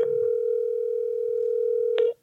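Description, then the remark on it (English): A steady, continuous telephone dial tone, heard while calling back after a call cut out, hums at a constant pitch for about two seconds, then cuts off abruptly with a brief click, with no voices. “Oh, no, I was calling and I wasn't recording, so I had to stop and call back.”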